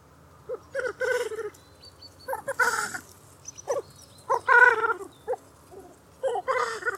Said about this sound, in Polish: To, czego słuchamy, to odgłosy cietrzewia.